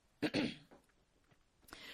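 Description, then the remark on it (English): A rough cough in two quick bursts, followed by quiet room noise and a few faint small sounds. “Sorry, I got a cough.”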